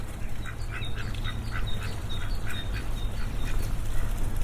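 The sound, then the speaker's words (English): Farm birds, including geese, call over and over in a busy, overlapping chorus of nasal quacks and honks on a farm by a lamb shed, fairly loud, with a steady outdoor rumble underneath. “All these fabulous birds.”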